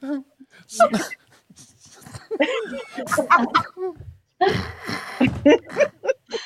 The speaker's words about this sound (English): What's wrong with the dog? Oh, he's just yakking on a bone. He got it up. He's all right now.